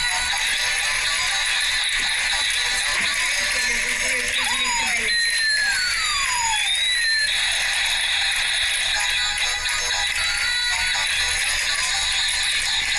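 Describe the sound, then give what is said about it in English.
The theme tune from Running Go plays steadily for the whole stretch, a dense, buzzing, mechanical-sounding texture with a few swooping high tones gliding down and up partway through. “how would you like to hear the theme tune from Running Go?”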